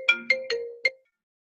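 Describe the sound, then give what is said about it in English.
A short electronic phone ringtone plays four quick tonal notes in an uneven rhythm, bright and fairly clear, then stops abruptly. No one speaks during it. “Is that my phone?”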